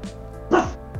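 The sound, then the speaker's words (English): A small puppy lets out a single sharp, high bark in the middle, with fainter yips before and after, heard in the background against a low hum. “I know, I can hear it barking in the background.”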